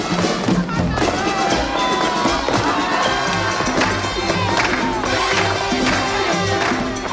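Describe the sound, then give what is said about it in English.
A loud, dense crowd din with many overlapping voices during an ensemble dance in a film musical, punctuated by repeated heavy stomps and scuffs of dancing feet, continuing steadily throughout. “Spivak has it vie with the sounds of the crowd and their feet”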